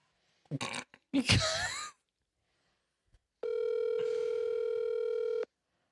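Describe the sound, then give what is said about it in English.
A phone call ringing out over a speakerphone: one steady, buzzing ringback tone lasting about two seconds, preceded by a short burst of throaty vocal noise and a moment of quiet. “I'm just going to call it real quick.”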